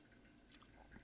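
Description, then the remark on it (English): Soft, quick drips of coffee patter steadily through a pour-over filter into a vessel, fairly quiet, with faint trickling in between and no voices. “how it drips and when it starts slowing down.”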